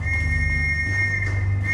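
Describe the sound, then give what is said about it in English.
A shrill, steady whistle in a foggy alleyway holds one high pitch without a break for the whole clip, sounding over a low, continuous droning rumble. “I hear the shrill whistle as I duck down the alleyway.”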